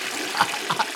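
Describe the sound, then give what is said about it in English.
Water runs steadily in a urinal, a continuous hiss of flowing water with a few brief splashy surges on top, with no talking. “Yeah, let's just go ahead and keep that urinal flowing.”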